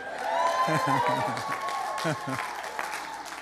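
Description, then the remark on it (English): An audience at a Destiny Church service applauds and cheers in a steady wash of clapping, with voices speaking over it and a sustained musical tone underneath. “Well, at least it wasn't golf applause.”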